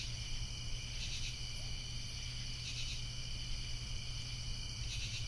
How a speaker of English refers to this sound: All you hear for about 5-10 seconds is everything shuts down and you are met with just the crickets.